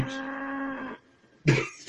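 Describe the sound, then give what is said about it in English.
A person lets out a low, drawn-out moo, imitating a cow, for about a second. After a brief pause comes a short, rough, cough-like burst. “A cow arrives.”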